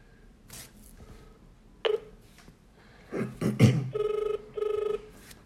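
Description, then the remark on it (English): A phone line ringing on an outgoing call: two short, buzzy ringback pulses near the end, preceded by a sharp click and some muffled handling noise, with no one talking. “I don't even know if he's going to answer.”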